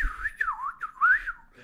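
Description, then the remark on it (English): A person whistles an imitation of R2-D2, the robot droid from the 1977 film Star Wars: a quick run of warbling, swooping chirps that slide up and down in pitch, fairly loud and without any talking. “And then R2-D2's like...”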